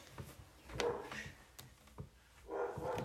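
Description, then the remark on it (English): A female dog barks a few times, the muffled barks coming in irregular bursts over a quiet background with no one talking. “What is she barking at?”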